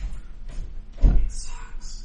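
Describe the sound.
A door shuts with a single dull thud as someone walks in, a short low knock that fades quickly, with muffled voices and room noise around it.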